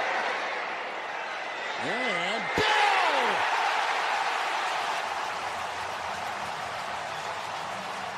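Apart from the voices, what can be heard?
stadium crowd cheering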